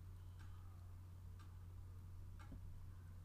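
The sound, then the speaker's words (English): A clock ticks steadily, three soft clicks about one second apart, over a constant low electrical hum with no one speaking. “Y'all hear that clock?”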